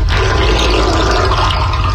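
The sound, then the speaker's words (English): Water roars and gurgles down a freshly cleaned drain with a strong, steady sucking whoosh, forming a small vortex, loud, filling the whole two seconds with churning, rushing noise and no voices. “I've never heard such powerful suction in my life.”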